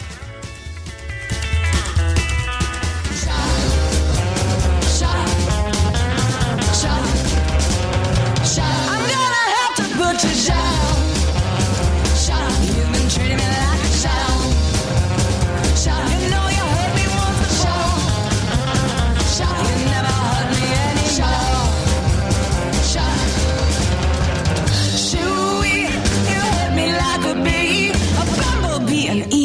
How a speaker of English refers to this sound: I should probably just shut up and play more music.